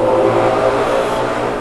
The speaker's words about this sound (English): Oh, okay. What is that? That was a car or something.